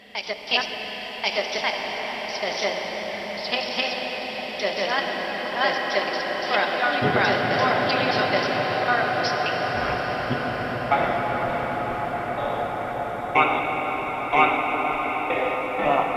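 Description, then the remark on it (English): A modular synth runs through the granular reverb of a Clouds module, making a dense, shimmering wash of sustained tones that thickens and deepens partway through, steady and fairly loud with no pauses. “So I'm using the bread and butter reverb from Clouds, which in my opinion sounds pretty good.”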